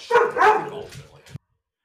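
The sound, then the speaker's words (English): A dog at home, greeting someone who has just come in, barks twice in quick succession, loud, followed by a softer trailing yelp before it cuts to silence. No one is talking. “And if you're drinking at home, there's the dog bark.”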